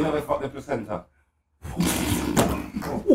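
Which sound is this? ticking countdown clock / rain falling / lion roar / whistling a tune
lion roar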